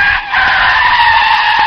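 A loud, sustained tire screech, a continuous high-pitched squeal that dips briefly near the start and then holds steady for nearly two seconds with no voices.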